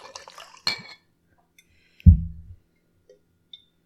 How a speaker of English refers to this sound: It's Austin and it's in the shape of Texas. I'm going to tell you, it's not the best bottle to hold. Yeah, it seems very weird to pour. I'm very afraid I'm going to spill this.